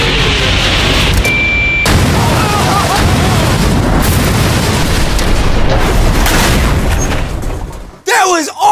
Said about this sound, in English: It might not have flown 100 feet, but at least we blew it up. But that explosion is literally nothing compared to what you're about to see.